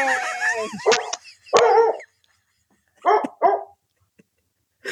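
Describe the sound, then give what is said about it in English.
A dog barks in short bursts, with a whiny, yelping edge at the start, then two quick sharp barks after a pause. “So, the dog's about to.”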